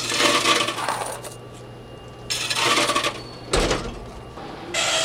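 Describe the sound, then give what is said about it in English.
A fare vending machine whirs and clatters in repeated bursts as a technician checks it and generates a ticket, with mechanical rattling like coins dropping through a slot, separated by brief quieter pauses with a faint steady hum. “the sound of a properly working ad fair machine is music to the ears”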